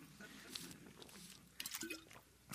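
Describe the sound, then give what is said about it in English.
Quiet sips from an IMMI water bottle: soft wet slurps and sloshing, then a clear gulp near the middle, with small mouth noises and breaths around it and no talking. “And with that, we're going to go to a commercial break brought to you by IMMI water bottle because my mouth is like cotton.”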